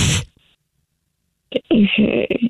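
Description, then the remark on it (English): A person on a phone call imitates a dog and cat fight with their voice: a short hissing burst, a pause of about a second, then a loud run of snarling, yowling noises. “That was a vicious dog and cat fight.”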